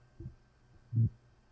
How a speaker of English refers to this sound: Don't put your head on the keyboard, woman. And she is tapping her tail. I don't know if you guys can hear it.